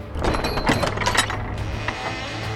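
sound effect, door creaking open

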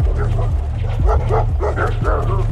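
animal, dogs barking

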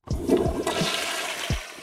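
household object, toilet flushing

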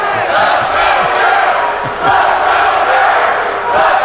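crowd, crowd booing

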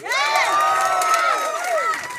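crowd, audience applause and cheering

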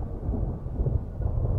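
nature, rain

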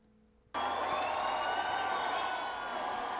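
crowd, concert crowd cheering

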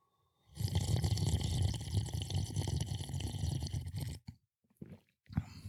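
food or drink, sipping a drink

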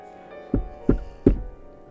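impact, knocking on a door

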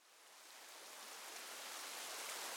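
nature, rain falling

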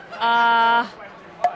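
signal or alarm, game show buzzer

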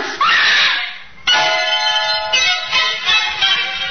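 sound effect, woman screaming in horror

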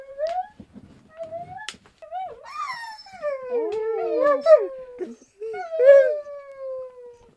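animal, dog howling

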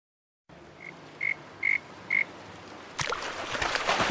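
animal, frog croaking

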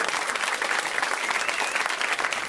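crowd, audience round of applause

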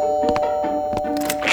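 household object, doorbell ringing

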